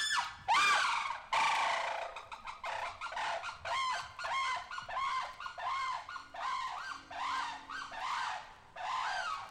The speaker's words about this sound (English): The shrieking call of the saris crane.